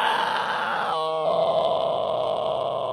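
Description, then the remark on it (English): A person lets out a long, loud, growling roar imitating a pizza monster, a strained throaty sound that holds steady for about three seconds with a brief tonal shift partway through. “Roar! I'm a pizza monster.”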